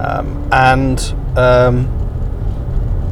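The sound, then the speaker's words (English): A steady low rumble of a car crawling slowly through Monday morning traffic at quarter to eight fills the background, while a person talks in short bursts over the engine drone. “I'm crawling through the typical quarter to eight Monday morning traffic.”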